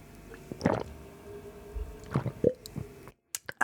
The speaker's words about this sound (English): Oh, sorry. I needed some water. You guys want to hear the sound of my gulping?